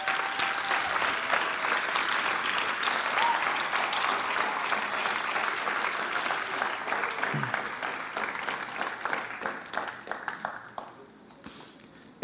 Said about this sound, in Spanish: ¿Y sabes qué? Él resucitó. Él resucitó. Tú le puedes dar un aplauso al Señor.